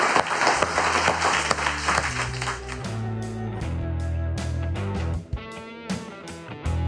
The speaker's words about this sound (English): And let's all just give ourselves a round of applause.